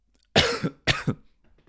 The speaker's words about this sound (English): God damn it. I'm coughing and shit. I hope I don't cough all throughout the... I will cough throughout. Excuse me.